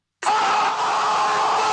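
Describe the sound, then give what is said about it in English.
A man lets out a sudden, piercing horror-movie scream, held at full volume without a break, with nothing else around it. “I mean, if I was trying out for Wes Craven's movie Scream, it was like, all right, auditioning for the part of the screamer, here is”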